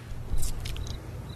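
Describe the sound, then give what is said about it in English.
A couple of faint, high-pitched chirps over a soft, rustling low hum, sounding like crickets, with no one speaking. “basically show that crickets were chirping while all of these other candidates couldn't say anything”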